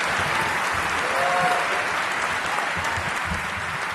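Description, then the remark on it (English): A crowd at a Hall of Fame ceremony applauds steadily, dense rapid clapping holding at a loud, even level for the whole stretch with no voices standing out. “clap it up.”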